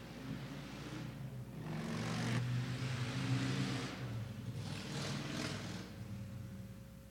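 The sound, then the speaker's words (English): A motorcycle engine rumbles loud, its pitch rising and surging twice as it revs, then settles back to a steady idle hum with no voices. “Livestream church gets the motorcycle.”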